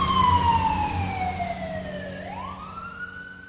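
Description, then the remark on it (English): Fire truck and ambulance sirens wail loudly as emergency vehicles arrive at an apartment complex, the pitch gliding steadily downward before sweeping back up, over a low rumble of traffic and engine noise, with no one talking. “The lady radioed some kind of signal in, and all of a sudden fire trucks and ambulances started showing up everywhere, and they kicked the front door in and found the lady inside.”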